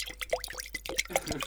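A drink is poured into a glass: a quiet stream of liquid with bubbly gurgles and small splashes, its pitch shifting as the glass fills.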